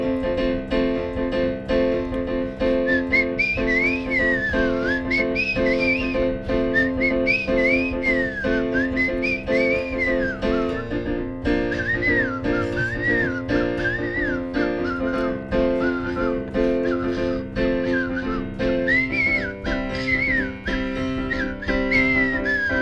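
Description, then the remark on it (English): Someone whistles a lilting, wavering melody, the tune rising and falling in short phrases over a steady humming backdrop for about twenty seconds without pause. “Second place spelling bee winner and third place whistling contest.”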